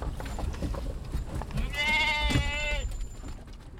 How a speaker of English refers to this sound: Once we got going, it was remarkably quiet considering there were 12 sheep and two humans in a Chrysler minivan.